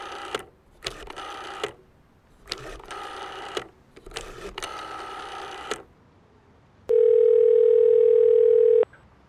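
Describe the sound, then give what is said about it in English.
A rotary phone is dialed: several bursts of rapid clicking as the dial spins back, with short pauses between, then a steady electronic tone hums for about two seconds. “It was a rotary phone, actually, so it took her a while to dial.”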